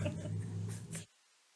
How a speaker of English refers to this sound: Sorry for my yawn.